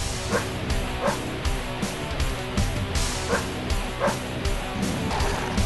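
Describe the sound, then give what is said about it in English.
A pit bull barks and growls in loud, repeated bursts over dense, distorted heavy metal music, the barks landing roughly every second in rhythm with the thick, driving instrumental backing. “Here's a song yes. of metal and it's a pit bull.”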